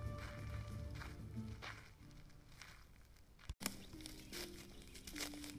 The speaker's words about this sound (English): And under the midday sun, the pilgrims move swiftly through the dense forest. A symphony of rustling leaves, muffled footsteps accompany their journey.